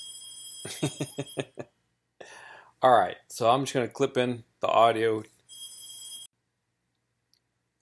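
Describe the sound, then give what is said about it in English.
A mobile phone rings with a quick run of rapid electronic beeps, then sustained tonal ring bursts before and after a stretch where a man speaks. “And there goes my wonderful phone. I've got to kill that thing.”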